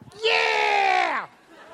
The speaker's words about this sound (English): Sorry, I didn't mean to yell over you yelling that you love me. No, someone literally yelled, I love you, I think.